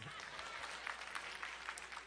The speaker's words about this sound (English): So, y'all can clap.